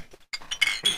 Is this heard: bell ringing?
no